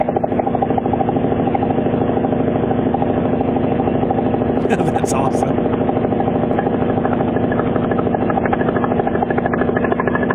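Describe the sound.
A loud diesel truck with an E-model Caterpillar engine and 8-inch straight pipes uses its Jake brake, hammering out a rapid, machine-gun-like staccato that holds steady for the whole stretch, with a brief voice speaking over it.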